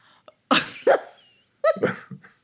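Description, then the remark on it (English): A person imitates a dog barking: two short, sharp barks, a brief pause, then a rougher, longer bark-like yelp. “Wasn't a very good bark.”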